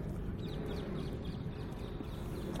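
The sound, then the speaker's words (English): A horse chewing grass, a steady, moderately loud stream of crunching and grinding with no pauses, while faint high bird chirps come through in the background. “Maybe you can hear him chewing. He's eating some grass.”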